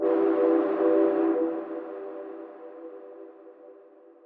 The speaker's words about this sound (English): It's said that the train's old steam engine whistle can still be heard echoing down the tunnel when everything else is eerily silent.